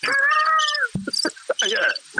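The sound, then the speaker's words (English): Crickets chirp in a short, steady burst, fairly loud, followed by a few scattered chirps and clicks before the sound trails off. “It was crickets after that comment,”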